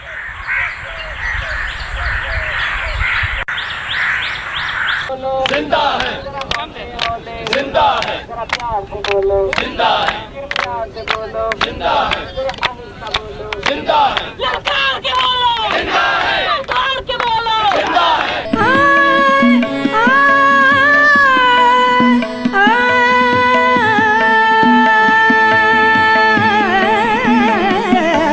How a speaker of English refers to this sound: Let's listen to this work from 2008, made at the time of the lawyers' protest in Lahore and Karachi. You'll hear slogans mingling with the noise of the streets